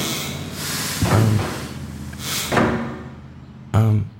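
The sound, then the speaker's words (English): A stuck revolving door at the lobby of the Venus Arms Hotel and Towers in Middling Fair thuds three times, heavy dull bangs spaced a second or so apart, with a soft hiss of background in between. “It's right here, through this revolving door.”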